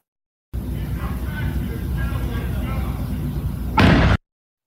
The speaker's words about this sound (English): So that was a flashbang, not a gunshot.